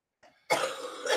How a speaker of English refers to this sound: No, I don't want to plug anything. I'm just mortified by this coughing fit going on behind me.